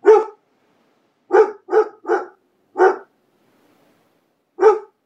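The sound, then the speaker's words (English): A dog barks six times in short, loud bursts, with a quick cluster of three in the middle and pauses before and after. No one speaks. “You haven't barked all day, but why not bark right now? What are you barking at?”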